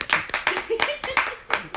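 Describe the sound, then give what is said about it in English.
Roughly six sharp, crisp hand claps from a one-person live audience, in a quick, steady rhythm, each a bright snap with a short decay, with faint voice sounds underneath. “Can we get a hand clap real quick?”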